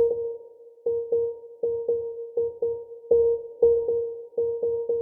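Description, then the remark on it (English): Short, clipped piano notes on a single pitch tap out an irregular, Morse code-like pattern, played fairly randomly to accent some of the beats of a music loop, over a soft sustained tone, loud with no voices. “Next, I added a Morse code-like piano sound to accent some of the beats, again played pretty randomly.”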